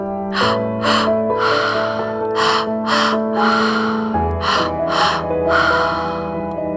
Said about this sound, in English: Allowing full body breath, stomach, chest, let go. That's it. Keep going. Keep breathing. Keep breathing.